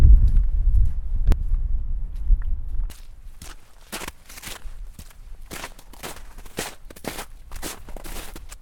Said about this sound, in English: A little bit of snow crunching. What do you expect in February in the Peak District? So yeah, a little bit of snow last night, which is nice.